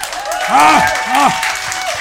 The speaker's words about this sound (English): Thank you. Always nice to get applause for not doing something.